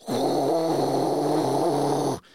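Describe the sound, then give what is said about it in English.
A person vocally imitates a sound heard aboard a climbing airplane, likened to the roar of reverse thrusters slowing a landing plane: one steady, rumbling, breathy whoosh with a low droning tone, held loud for about two seconds before cutting off abruptly. “Like if you've ever been on a plane, when the plane lands and they hit the brakes and they hit the reverse thrusters to try to get, you know, the plane to slow down faster, I'm hearing that sound.”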